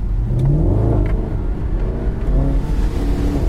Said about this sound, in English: Gareth is currently driving on a mud track. It's true. And it's remained all four wheels pointing in the same direction as the way I want to go. It's a good car, this, Rob.